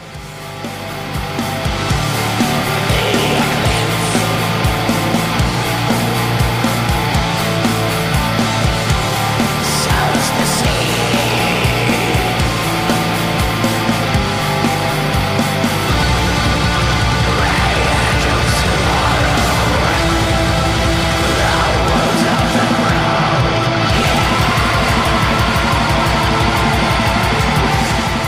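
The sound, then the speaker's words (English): A dense, loud black metal track plays continuously, with a wall of distorted guitars carrying a melody over relentless drums and harsh, shrieked vocals buried in the mix. “It's definitely got the black metal vocals.”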